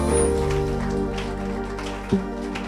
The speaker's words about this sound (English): Give a big clap offering unto the Lord. Big, big, big, big clap offering unto the Lord. Let it flow right here.